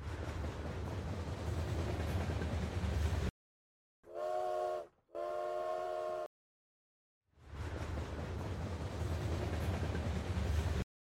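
A train rumbles along the rails with a steady, loud clatter, broken by two long whistle blasts before the rolling rail noise resumes. No one speaks.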